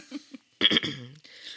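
A loud double cough, two sharp harsh bursts in quick succession trailing into a brief voiced groan, after a couple of faint murmurs and followed by a soft breathy hiss.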